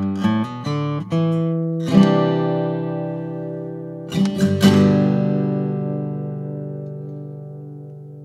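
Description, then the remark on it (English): Acoustic guitar played alone, recorded with an unaltered SM57 microphone: a quick run of picked notes, then a strummed chord left ringing, another burst of strums near the middle, and a long, slowly fading sustain. “Of the four of them, my favorite's the MKH50 by a mile on the acoustic guitar.”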